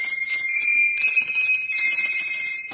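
A doorbell rings loudly and continuously for nearly three seconds, a bright, steady metallic ring, stopping abruptly with no voices; it is the bell of Sandy's workshop at the North Pole, rung at 11:45 p.m.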